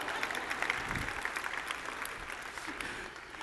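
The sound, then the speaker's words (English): An audience claps steadily, a dense, crackling wash of many hands sustained at an even loudness throughout before easing slightly at the end. “Would you at least clap for that?”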